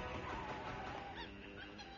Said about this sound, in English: You can hear the monkeys. There they are.